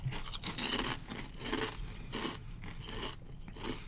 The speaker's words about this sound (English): They're good-looking chips. Good crunch.